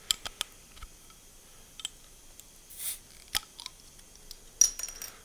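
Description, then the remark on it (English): A bottle opener clicks and scrapes against the cap of an amber beer bottle, struggling to get it off, in irregular metallic taps, with a brief grinding rasp midway and a sharper snap near the end, no voices. “If you heard that weird percussion noise I was making, that was the bottle opener attempting to take this lid off.”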